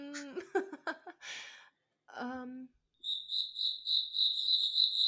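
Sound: cricket chirping sound effect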